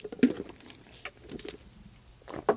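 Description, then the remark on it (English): Someone taking a water break, drinking water: a few soft, brief gulping and sipping sounds spaced across a couple of seconds, with quiet wet mouth noises in between and no talking. “Water break.”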